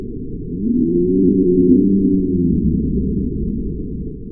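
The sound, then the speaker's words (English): A deep, drawn-out mooing call from an African dwarf crocodile, the world's smallest living crocodile at just under 2 meters long, a low resonant bellow with layered harmonics that swells and slowly fades over about four seconds, with no speech. “That is an African dwarf crocodile, the world's smallest living crocodile, at just under 2 meters long.”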